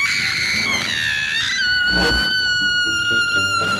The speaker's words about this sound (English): Yeah, and her scream is gnarly. So check it out.